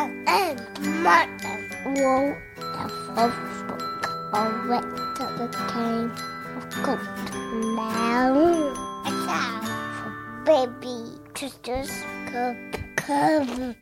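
A child shrieks and wails in high, sliding bursts behind a steady layer of tinkling, bell-like tones, with several loud rising cries in the middle.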